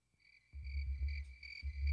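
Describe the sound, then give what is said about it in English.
Crickets trill steadily at night in a high, continuous drone, with a low rumble joining partway through. No one speaks, and the chirping carries on evenly from start to finish. “Cue the crickets.”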